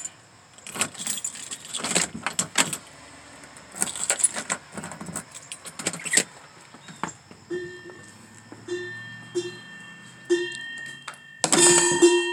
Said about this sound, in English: I got a door on my bell. I say back things backwards. I have a bell on my door.